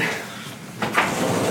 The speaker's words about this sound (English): Should I open the door? No, you're good. We're good. You got it? Open the door.